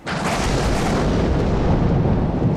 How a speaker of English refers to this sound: Hold your nerve, men! The storm is fierce, but we are mighty!